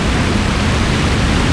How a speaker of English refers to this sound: And the waterfall is just on here on my right side.